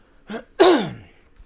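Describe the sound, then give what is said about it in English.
A brief rasp followed by a louder, harsh cough that trails into a strained vocal tail, like someone clearing their throat after choking, with no talking. “I'll swallow a wrong sip of water or something. I'll be coughing for 10 minutes.”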